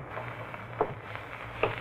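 Rain falls in a steady, soft hiss that stays even throughout, with two brief, higher-pitched tonal chirps cutting through it about a second apart.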